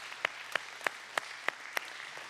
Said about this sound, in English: Let's give her one more round of applause.